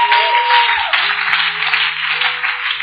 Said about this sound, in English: I think he deserves a big round of applause.